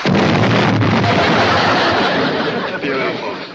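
Gomez from The Addams Family crashes and blows up his toy trains. A loud, continuous roar of explosive noise fills the whole few seconds, rumbling and hissing without a break before easing slightly at the end.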